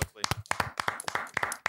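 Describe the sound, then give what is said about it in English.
A short burst of hand clapping, a dozen or so quick, sharp claps in an uneven rhythm, fairly loud, with voices and cheering woven through. “Round of applause.”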